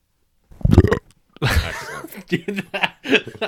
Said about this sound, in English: But I'm wearing my headphones, and that burp was just the worst sound. Like, that was like, that was way too much.